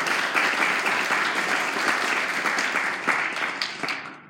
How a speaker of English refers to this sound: but let's give her a hand clap if you can.